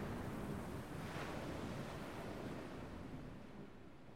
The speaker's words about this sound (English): Sopping wet, they flop onto the moss-covered deck as the ship breaks free, bobbing in the waves. As it rolls over raging water, Jablon rushes to the helm, steering out to sea.